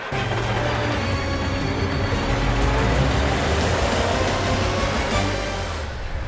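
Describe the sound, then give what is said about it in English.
A car engine drives steadily as Carl the car drives to the farm, a continuous low rumble with a broad hiss of road noise over it, holding at a fairly even loudness throughout without any voices. “Carl drives to the farm.”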